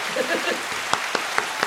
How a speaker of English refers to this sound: Hand clap really quick. Oh, a hand clap? There we go. An applause